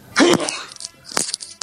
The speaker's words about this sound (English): are you really going to sneeze again right now, dude?